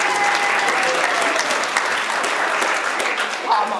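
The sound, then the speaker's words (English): Steady applause from an audience for volunteers after a Coke taste test, a dense, continuous patter of many hands clapping at a fairly loud level with faint voices mixed in. “Can we have a round of applause for our volunteers?”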